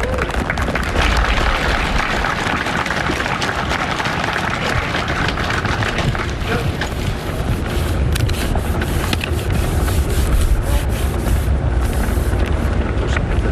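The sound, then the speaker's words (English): A podium is wiped down at an inauguration ceremony on a snowy morning: loud, continuous rubbing and scrubbing noise with rough, repeated strokes that grow choppier toward the end, and no one speaking. “They're wiping down the podium.”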